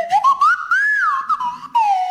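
A person whistles a lively tune up close, the clear pure pitch sliding and bending between notes in short phrases with brief breaths in between, loud and alone.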